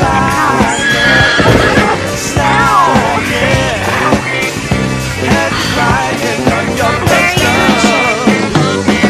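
A horse whinnies loudly and repeatedly, its neighs rising and falling, while hooves clip-clop steadily underneath throughout.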